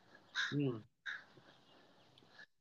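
crows cawing

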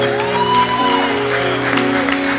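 audience clapping

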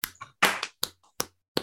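hosts clapping

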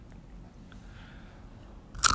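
crunching food

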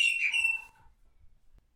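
birds chirping

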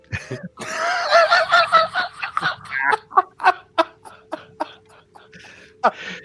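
bird honking

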